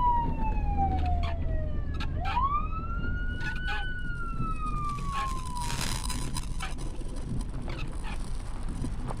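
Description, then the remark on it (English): A police car siren approaching from behind wails in slow rising and falling sweeps, fairly loud and clear, over a steady low rumble of road noise, with no one speaking. “Another cop, I supposed.”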